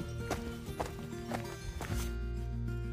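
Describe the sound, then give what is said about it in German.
Cowbells worn by cows grazing on a pasture clank and ring in an uneven, repeating rhythm, their metallic tones lingering between knocks, with a steady low rumble underneath and no one talking. “Also, es ist ein absolutes Klischee, diese Kühe mit den Glocken.”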